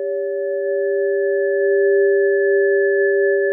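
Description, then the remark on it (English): Sonified oscillations of the Sun, its 'solar bells', from the piece '5 Minute Oscillations of the Sun' by artist Caroline Devine, made with scientists. Heard as a steady, sustained chord of pure, bell-like tones, two close low-mid pitches with a fainter higher one, holding unbroken and fairly loud throughout with no voices. “Is It's not just scientists who've been captivated by these solar bells.”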